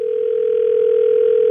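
A steady, unbroken telephone line tone hums loudly at a single pitch for the whole moment, with no voices, as a call is placed to a caller's wife while he holds on the line.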